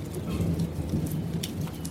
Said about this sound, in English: It's Sunday, May 20th at about 7 p.m. And it's actually been storming and raining in Austin and also New Braunfels throughout the day. So about to make my way in, but it's raining, so I'm going to shut the recorder off for just a brief moment.